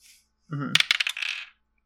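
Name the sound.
dice being rolled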